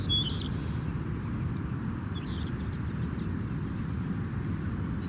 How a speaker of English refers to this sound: These seaside sparrows we're currently hearing are the most obvious example. You can hear one particularly close male off to our left and numerous others in the distance.